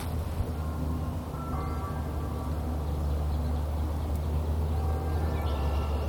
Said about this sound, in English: Swear to God, you try to find some peace. You got a plane on the right side, you got a church bell on the left side. I think it's all in traffic. As great as this place is, it sure is noisy. Oh, another bell.